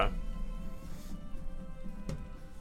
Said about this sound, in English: Bless you.